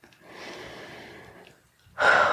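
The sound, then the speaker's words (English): A slow, deep breath: a long airy inhale, a brief pause, then a louder, rushing exhale starting near the end, as the breathing is slowed to a comfortable, relaxed pace. “And just slow your breathing down to a comfortable pace, just in and out, just relaxing your breath.”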